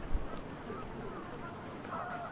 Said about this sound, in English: There's a bunch of geese here, just begging for food.